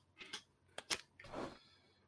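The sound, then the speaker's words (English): A playing card being pulled from a deck during a tabletop game, turning up the five of diamonds: a few soft papery slides and flicks, with a longer scraping swish at the end and no one talking. “I don't have a deck of cards, so I need something to pull for me.”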